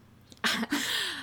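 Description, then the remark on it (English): A single loud sneeze follows a short intake of breath, bursting out in two harsh, noisy parts with a falling voiced tail. No one speaks. “Bless you.”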